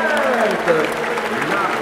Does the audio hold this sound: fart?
no